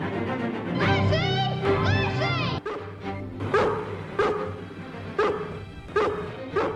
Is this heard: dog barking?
yes